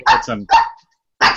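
A dog barks loudly: three quick sharp barks in a row, a short pause, then one more bark. No one talks.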